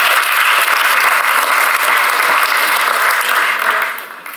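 A crowd claps loudly and steadily, a dense wash of many hands that holds for about four seconds before starting to fade at the end. No one speaks over it.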